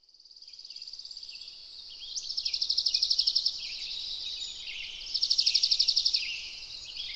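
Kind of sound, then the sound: bird, birdsong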